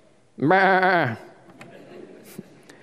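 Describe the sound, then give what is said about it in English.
A single loud, quavering bleat from a sheep or goat, lasting under a second, then fading into a quiet background with faint scattered noises. “Esau's 400 men surrounded by a flood of sheep and goats and rams”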